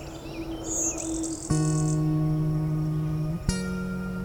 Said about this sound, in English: Blue-wing warblers really belting it out because they're not very loud birds. That kind of song doesn't carry much.